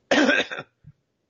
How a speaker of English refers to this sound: I'm going to cough, hold on.